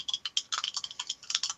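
Dice clatter and tumble in a quick, irregular burst of sharp, high-pitched clicks, fairly quiet and lasting under two seconds with no voices, rolled for a "rule of cool" check in a game and landing a 10.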